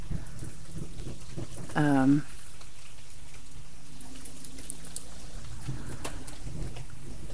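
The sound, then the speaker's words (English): Steady rain hisses throughout, heard from inside a van with its back gate open, while a low rumble of thunder rolls underneath, with a brief tonal burst near the start standing out above the downpour. “And the thunder, which is a little unnerving, but so it feels good to be here at the end of this day.”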